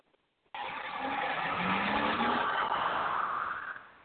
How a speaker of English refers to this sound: I'm driving through town. Got to go pick up my son from preschool.